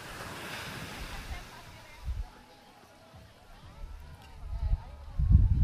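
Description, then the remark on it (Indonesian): Ocean waves crash on a shore: broad rushing surf noise with low rumbling swells building and breaking, louder toward the end, wind buffeting the microphone; faint voices may sit underneath. “Gue gak tahu apa yang lo rasain pas lo dengerin deburan ombak ini, tapi satu yang pasti itu damai.”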